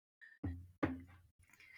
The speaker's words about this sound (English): Are you okay? I'm okay. I just almost knocked over my glass.